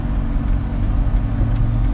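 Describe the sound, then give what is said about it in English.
Steady low engine rumble of road vehicles, an RTA clean air bus with its turn signal on and a Ford Focus car idling or moving, with continuous traffic drone and no talking. “Come on, RTA bus. Don't turn right.”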